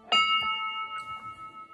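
A bell is struck once and rings out with a clear, bright, shimmering tone that lingers and slowly fades, with no one talking over it.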